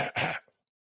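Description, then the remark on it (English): Two quick, forceful deliberate coughs, the second longer and rougher like a throat being cleared, then silence. “I'm not supposed to say these things, but Let me cough for you.”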